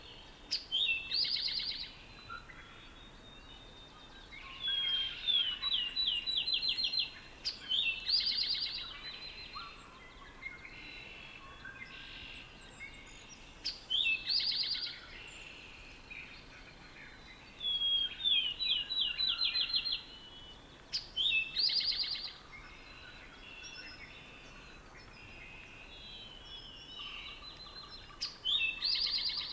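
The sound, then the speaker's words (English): Several songbirds sing repeated bright phrases in bursts every few seconds, some trilling and some chirping, at the edge of a meadow in Finger Lakes National Forest at dawn on the 1st of May, over a soft steady outdoor hush with no one talking. “I'm at Finger Lakes National Forest, at the edge of a meadow.”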